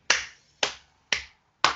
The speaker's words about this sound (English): Because that, I don't know if you can hear the clap through the screen, that performance was just classic Jose Mourinho.